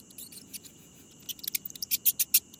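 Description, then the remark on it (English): A mouse squeaks in a quick, irregular series of thin, high-pitched chirps that grow louder and more frequent toward the end, over a faint low rustling background. “The great gray owl can hear the squeak of a mouse over half a mile away.”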